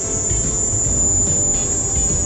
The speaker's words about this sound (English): Scientists say the sounds were crickets.